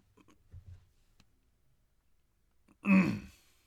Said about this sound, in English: I got a huge frog in my throat. I appreciate that BTS of you coughing directly into the microphone.